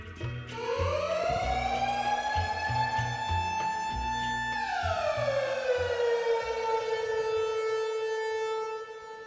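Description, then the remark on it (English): A loud siren winds up to a sustained high wail, holds steady, then slowly falls in pitch, with a low rumbling drone beneath it throughout. “But maybe we could do a siren.”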